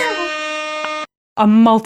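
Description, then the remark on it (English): Two loud, brassy air horn blasts: a sustained one lasting about a second, a brief pause, then a shorter second blast, with no talking over them. “I want to wear air horns all the time for everything I ever do.”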